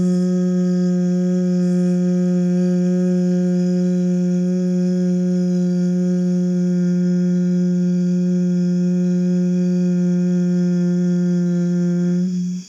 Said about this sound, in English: And as you exhale, you're going to kind of create like a hum. Again, inhaling and hum.